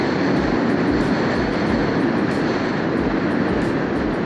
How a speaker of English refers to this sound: The topic of the day, everyone, there's a train passing by. I hope you can hear me well. I'm waiting for it to pass.